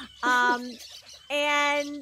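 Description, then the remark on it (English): Two loud American robin chirps: a short call, a brief pause, then a second slightly longer one, with no talking around them. “We have an American robin.”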